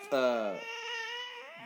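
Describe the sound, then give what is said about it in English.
A single long, drawn-out cat meow, loud, starting sharply then falling and trailing off over about a second and a half. “A cat.”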